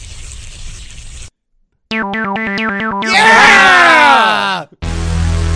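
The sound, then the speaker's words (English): Distorted synthesizer sounds in a piece of music: a burst of rhythmic, pulsing electronic chords, then a loud, gritty swell of sliding, downward-bending synth tones, with brief noisy segments around them. “How many synth sounds do you need?”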